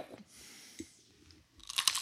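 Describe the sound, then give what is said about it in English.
A crisp, crunchy bite into a fresh jalapeno, with a brief snap followed by a burst of loud, bright crackling chews toward the end. No one speaks. “Oh my God, it's so loud. So I gotta say, anybody who's never had a fresh jalapeno, they are hot.”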